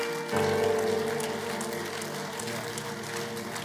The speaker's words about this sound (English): When you have life, you must be grateful. Clapping is free. When you come to church, clap.